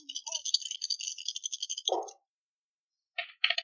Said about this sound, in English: Oh no, I dropped my dice. Oh no. Just roll dice.